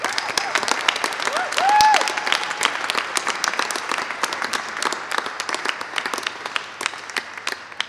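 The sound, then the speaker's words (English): A church audience breaks into sustained applause to Jesus after worship, dense overlapping claps for the full eight seconds, with a brief rising whistle or whoop cutting through near the start. “I would love to give an applause to Jesus because I think He just deserves it.”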